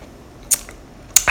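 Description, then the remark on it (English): Someone sips a Zevia drink from a can: two sharp metallic clicks about half a second apart, followed by a steady, airy fizzing slurp that continues to the end, with no talking. “I'm going to take a sip of this delicious Zevia right now.”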